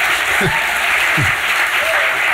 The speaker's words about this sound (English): Guys, you're half asleep. We should be clapping like crazy with this right now.